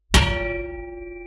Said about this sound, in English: Stopping for a drink, Dad got out a funny-looking bottle that clanged as he put it down.